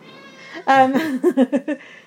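A cat with a dirty nose meows, one loud drawn-out meow followed by three or four shorter, clipped meows in quick succession, with a faint steady hum underneath.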